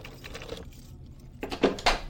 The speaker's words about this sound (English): All right, I'll open the door. Hold on.